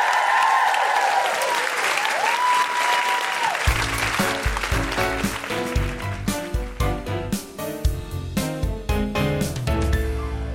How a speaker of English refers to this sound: Big round of applause for Liz.